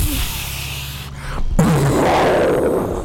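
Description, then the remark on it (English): A voice imitates explosions with a rough, breathy blast, a short pause, then a second burst that opens with a low rumbling grunt and trails off into hissy noise. “You make good explosions.”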